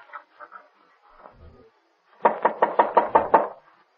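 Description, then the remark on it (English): A few soft, scattered taps, then a pause, followed by a rapid run of about seven loud, solid knocks on a closed door down a hall, with no voices. “Yep, the door's closed. All right, let's open it.”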